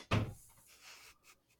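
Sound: door being closed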